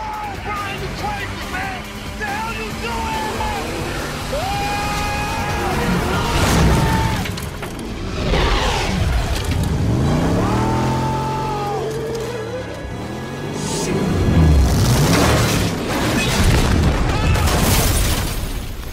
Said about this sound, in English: Culminates with Paul Walker and Tyree hitting a ramp, jumping, I would say, about 45 yards and landing into a yacht.